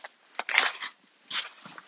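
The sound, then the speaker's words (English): Dogs crunching on chicken and lamb junior dog food, a few irregular bursts of dry, crackly chewing and clattering with short pauses between, fairly quiet and with no talking. “Well, I'll just give the dogs some food.”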